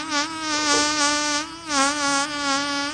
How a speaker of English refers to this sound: Let me find the biggest fart here that we have.